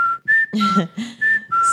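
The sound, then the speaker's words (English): A person whistles an imitation of a cuckoo clock: a bright two-note call, alternating up and down, repeated several times in quick succession, loud and clear with a faint voiced hum underneath. “Because she pokes her head out of a clock every 15, every 15 minutes.”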